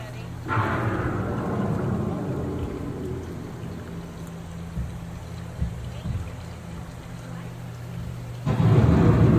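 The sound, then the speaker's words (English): Deep rolling thunder from an approaching storm rumbles over a steady hiss of rain, fading through the middle before a fresh, louder rumble swells up near the end. “The approaching storm may seem violent and destructive to us, but to nature, it's a new beginning in the cycle of life.”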